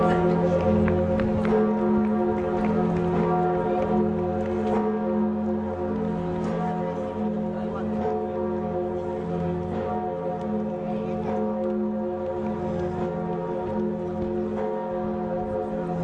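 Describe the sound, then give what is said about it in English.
The biggest bell of Notre Dame Cathedral, dating back to the 1600s, tolls loudly, its deep resonant hum sustained throughout as repeated strikes blend into one continuous, ringing wash of sound. “What a joy to know that as bad as the fire was, we may well hear that great bell again.”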